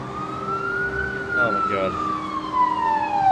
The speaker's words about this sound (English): And it hears the sirens and it runs off.